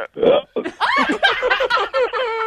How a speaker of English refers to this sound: It's like a whole burp conversation now.